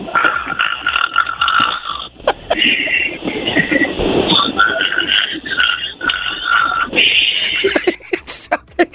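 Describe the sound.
A caller on Virgin Radio does a loud, exaggerated snoring impression for an on-air contest, with rough, rattling inhales and gurgling, croaky exhales repeating in uneven bursts for several seconds.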